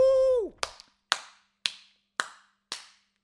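A single person claps five times at a steady, even pace in a studio to celebrate International Earth Day on 22 April, each clap sharp, following a brief sustained tone at the very start.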